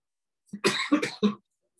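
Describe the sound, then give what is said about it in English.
A man coughs in a quick cluster of three harsh, throaty bursts lasting about a second, then silence. No one speaks. “You can cough, man.”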